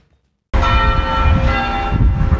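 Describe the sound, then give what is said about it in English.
Bells ring out loudly in a local park in central Bendigo after a moment of silence, their rich overlapping tones sustaining and shimmering together in a steady peal with no voices present. “At a local park in central Bendigo, bells ring out as residents from all backgrounds gather in this shared space under the shady trees.”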